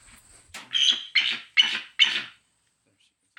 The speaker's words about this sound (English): That's her bark.